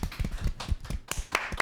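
A short burst of clapping from what sounds like a small group, welcoming guest Dax Flame on a show, the claps uneven and overlapping, fairly soft, lasting under two seconds with no voices.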